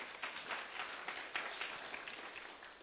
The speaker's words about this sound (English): You guys can sit now. Thank you so much. Let's clap for them.